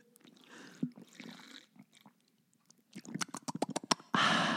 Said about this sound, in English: I think I will keep that in if it sounds cool. I don't know how I feel about drinking noises. You know what I mean? Slurping.